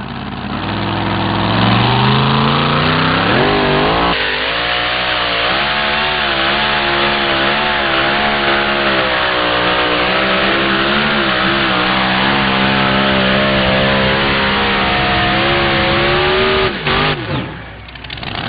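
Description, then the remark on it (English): The truck Relentless, driven by Scott Weens out of Beatrice, Nebraska, roars loudly and continuously during a truck pull pass, climbing in pitch as it revs up, holding a strained, rattling drone for the length of the pull before cutting off abruptly near the end; the pull measures 360.4. “Here comes another truck out of Texas.”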